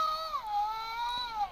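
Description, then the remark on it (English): A cartoonish ghost wail: one sustained, wavering moan that slides downward in pitch and then lingers, with bright overtones and no talking around it. “That's not a very scary noise. That's a hilarious ghost noise.”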